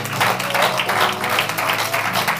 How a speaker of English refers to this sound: Why don't we give the Lord a hand clap of praise again tonight? Hallelujah.